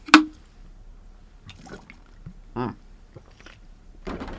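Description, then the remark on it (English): A sharp clink of a cup or bottle, then quiet sipping and swallowing sounds with soft rustles in between as someone takes a drink of water. “Get a little bit of water here.”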